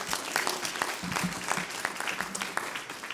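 An audience claps steadily, many hands producing a dense, crackling patter at moderate loudness for a few seconds, with faint murmurs mixed in.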